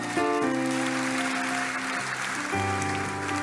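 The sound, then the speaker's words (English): A church audience claps steadily in a dense, continuous patter, mixed with sustained keyboard or organ chords that shift pitch partway through, with no voices rising above it. “You don't want to clap?”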